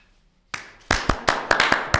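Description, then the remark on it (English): A lone person clapping emphatically in a movie scene, the character Frank Jr. standing up and clapping for his dad: about seven sharp, loud claps in a steady rhythm with a slight echo and no talking. “Doesn't Frank Jr. stand up and he's just clapping emphatically?”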